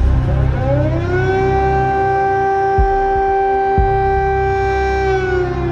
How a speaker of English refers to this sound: First came the familiar sound of air raid sirens.